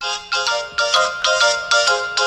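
A telephone rings with a bright, electronic ringtone, repeating in quick, regular pulses about every half second, steady and fairly loud with no voices.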